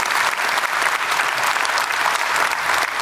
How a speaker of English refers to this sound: Oh, come on. You can clap there.